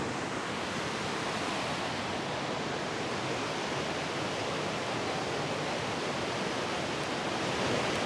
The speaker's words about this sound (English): Today we're recording at Nymph Falls. I'm trying to speak up so you can hear me over the water